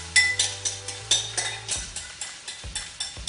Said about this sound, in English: now it's a little less sizzling